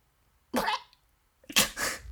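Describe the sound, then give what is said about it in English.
Someone imitates a duck coughing with two short, raspy vocal bursts about a second apart, fairly loud, with no talking around them. “God, how do I make a duck cough?”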